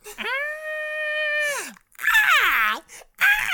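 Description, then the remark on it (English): A person imitates the shriek of a prehistoric flying Pokémon: a long, steady, high-pitched wail that slides down at the end, followed by a harsher, wavering screech that bends up and down, then a brief final cry. “is said to have flown in ancient skies while shrieking high-pitched cries.”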